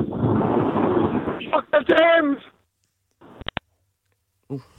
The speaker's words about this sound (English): Nah, oh, the line just a bit windy off there, yeah.